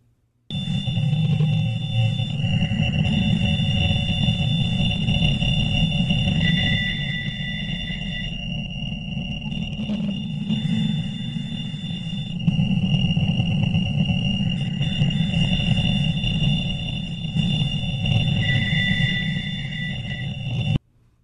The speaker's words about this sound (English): I'm actually going to play you just a little bit of the WOW signal itself